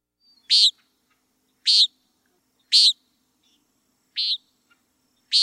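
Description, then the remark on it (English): A nighthawk calls five times at steady, roughly one-second intervals, each a short buzzy, nasal note, clear against a quiet background. “Nighthawks are on the Audubon Society's blue list of bird populations that are suffering ongoing or serious population decline.”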